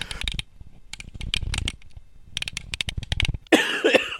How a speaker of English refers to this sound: Yeah, sorry. Weren't many outtakes this one because it was mostly just me coughing and gasping for breath, which is not as entertaining as you might think.